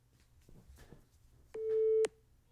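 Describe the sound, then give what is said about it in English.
A single steady electronic beep of a phone's recording countdown rings out loud for about half a second, following a stretch of faint rustling and handling noise. “I had my phone slightly away and I heard the countdown.”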